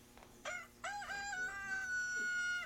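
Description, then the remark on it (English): A rooster crows loudly, a short rising call followed by a long, sustained cock-a-doodle-doo with a bright, strained tone, heard alone over faint background hum. “That's a rooster.”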